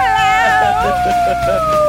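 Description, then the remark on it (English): A person in the AfterBuzz TV studios imitates a wolf howl: one long, loud, sustained vocal tone that glides slowly downward in pitch, with faint chatter and voices underneath. “I love that you just wolf howled.”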